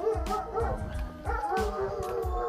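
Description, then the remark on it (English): Several dogs bark and howl together in a steady, overlapping chorus, with sharp yips cutting through drawn-out wavering howls, and no one is talking. “And you hear the dogs probably don't like me talking right now.”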